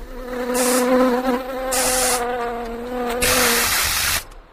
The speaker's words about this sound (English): I've just got a bee in the studio. Hang on a minute.